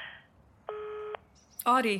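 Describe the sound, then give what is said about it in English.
A single steady voicemail beep sounds for about half a second, loud and clear against quiet line noise, then a person begins speaking shortly after it ends. “Leave a message, and I'll get back to you as soon as I can.”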